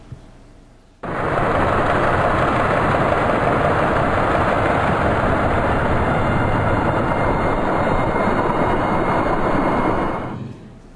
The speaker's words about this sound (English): So this is an example of what shipping sounds like underwater from a commercial vessel.